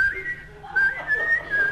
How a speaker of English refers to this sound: Whistle. The whistle.